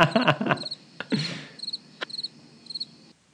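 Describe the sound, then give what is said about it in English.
Crickets chirp in quick repeated pulses, a steady high trilling that continues for a few seconds. A few brief rustling thumps come near the start, and no one speaks. “We need to do some more crickets.”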